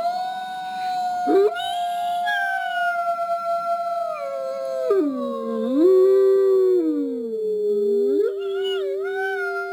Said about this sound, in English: That's the howl of a gray wolf. For millennia, such wolves roamed across much of what would become California.